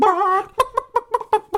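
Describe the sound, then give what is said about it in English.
Chickens cluck, a drawn-out squawk followed by a quick, steady run of about six sharp clucks. No voices are heard. “It's the chickens.”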